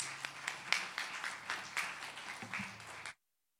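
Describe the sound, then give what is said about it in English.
An audience applauds a guest speaker as she is introduced, with steady, dense clapping that holds for about three seconds and then cuts off abruptly, with no voices over it. “So can you give her a round of applause, please?”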